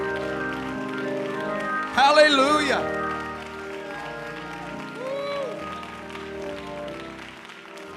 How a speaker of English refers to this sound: Would you set that Bible down tonight and clap like the devil's head's between your hands? Come on, clap like the devil's head's between your hands right now.